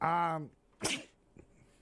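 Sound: sneeze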